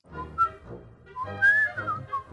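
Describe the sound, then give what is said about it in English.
Someone whistles a short, jaunty melody recalling the theme from the film The Great Escape, a handful of bright, clear notes rising and falling in a march-like rhythm over a low murmur in the background. “My mind automatically goes to kind of like that Great Escape whistling.”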